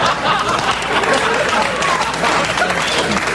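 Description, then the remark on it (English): An audience applauds a remark about Brezhnev being close to death: a dense, steady wash of many hands clapping at an even loudness for a few seconds, with crowd voices murmuring underneath. “Don't applaud that.”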